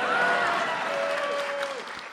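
audience applause

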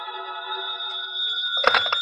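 telephone ringing

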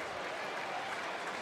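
applause

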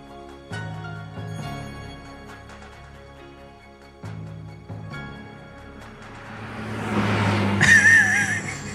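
car sound effect

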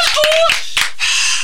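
studio audience clapping

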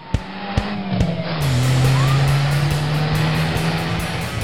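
car accelerating away

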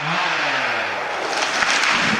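chainsaws cutting trees

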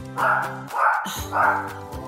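dog barking

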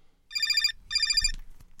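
cell phone ringtone

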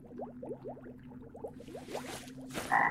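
frog croaking

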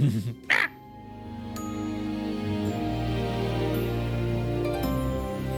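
ravens cawing

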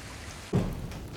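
rain falling

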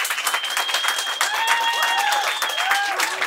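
audience clapping to vote

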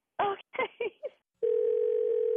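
telephone dial tone

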